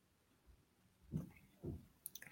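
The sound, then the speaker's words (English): Quiet chewing of Mike and Ike chewy fruit candy: two soft, squishy chomps about half a second apart, then a few small wet mouth clicks. No one speaks. “Okay, but as for me, as I'm chewing my Mike and Ace here, this episode is not sponsored by Mike and Ace just yet.”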